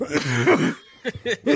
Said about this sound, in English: I wasn't ready. Damn, bro. I guess my cough was contagious.